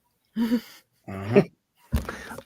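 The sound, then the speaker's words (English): A dog vocalizes in three short, separate bursts of whining yelps with brief pauses between them, moderately loud, with no one talking. “Cautiously, apparently my dog is not.”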